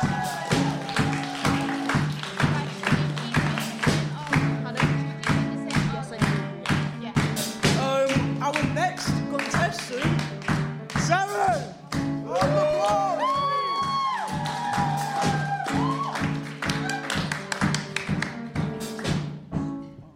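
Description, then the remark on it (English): A crowd claps steadily for about twenty seconds for a contestant leaving the stage, the dense patter of hands mixed with scattered whoops and shouts of cheering, loud and sustained throughout. “Round of applause for contestant!”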